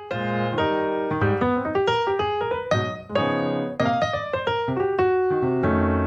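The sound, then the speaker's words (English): Electric keyboard plays jazz live in Slacko's Twitch live-stream performance, with rich sustained chords and melodic runs shifting every second or so, continuous and fairly loud, with no voices. “What you're hearing is one of Slacko's performances on Twitch, a live streaming platform that's most well known for its video game enthusiasts.”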